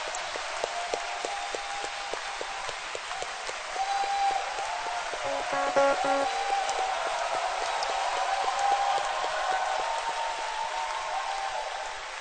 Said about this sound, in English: With few minutes, can we give a very big clap to celebrate Bishop Dag? Let's celebrate him.